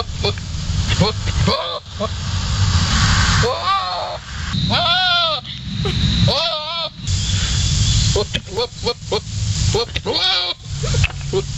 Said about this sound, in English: Goat mating is still the best animal mating noise, I think.